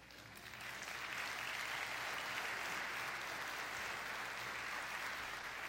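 Steady audience applause for a person asked to stand up, a dense wash of many hands clapping that swells within the first second and holds at an even, fairly loud level throughout, with no voices standing out.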